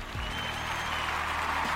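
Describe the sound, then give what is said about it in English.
Steady applause for the supporters, a dense wash of clapping that holds at an even level throughout without pauses or voices. “Come on, clap it up for the supporters.”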